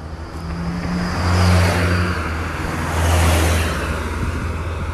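Steady road traffic with vehicles swelling past twice, a low engine hum and tire whoosh rising and fading, with no talking.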